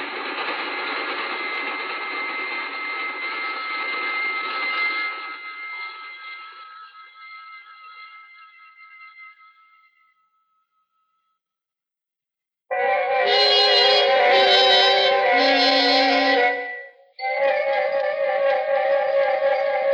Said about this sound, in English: We sat there for a long, breathless moment as the train roared off into the night, leaving only their singing rails to mark its passing.